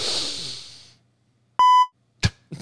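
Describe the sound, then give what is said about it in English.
A breathy, hissing inhale fades out, then after a short silence a single loud, clear electronic beep sounds. A couple of brief noisy bursts follow at the end. “That inhale. And then the beep.”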